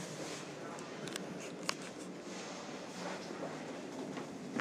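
Inside a moving passenger train: a steady, dense rumble and hiss fills the space, broken by a few sharp clicks and rattles from the carriage.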